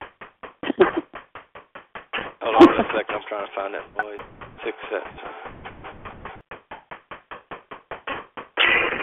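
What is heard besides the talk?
hammering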